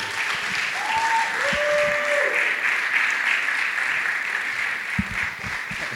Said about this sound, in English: So, please give a rowdy round of applause for